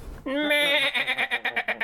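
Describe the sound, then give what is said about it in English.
A single sheep bleats, a long nasal cry that starts steady and then breaks into a rapid quavering tremble before it ends. “It's okay, they're just a little scared. Hi, sheep!”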